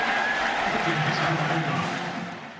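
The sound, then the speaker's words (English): A stadium crowd cheers at a USC football game after a good snap, a loud, dense, continuous roar of many voices that stays steady and eases off slightly at the very end. “And a good snap from Jake. Listen to the crowd. Look at the USC sideline.”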